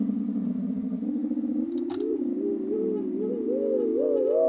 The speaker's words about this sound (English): Let me stop the arpeggio.